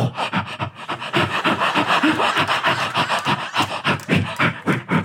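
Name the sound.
imitated heavy panting breathing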